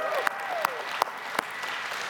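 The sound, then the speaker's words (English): An audience claps together in a steady, moderate patter, with a few sharper, louder claps standing out at roughly even intervals. No one speaks over the applause. “It's a tough day to clap because it's like, you know, there's not as much agility as before because of what I did to myself the last 2 or 3 days.”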